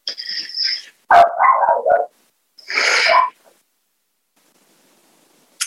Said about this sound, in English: I think I'm going to stop there. My dog is barking and it's really distracting me.